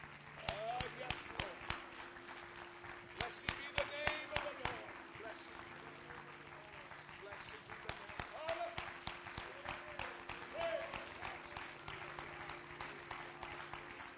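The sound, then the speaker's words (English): An audience claps their hands unto the Lord in a steady stream of overlapping claps, lively and sustained, with voices murmuring and calling out underneath. “Put your Bibles down and let's put our hands together and clap unto the Lord.”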